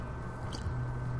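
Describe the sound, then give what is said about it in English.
A quiet, brief slurping sip of hot coffee, one short wet burst in the middle over a steady low hum, with no talking. “I need a sip of my coffee.”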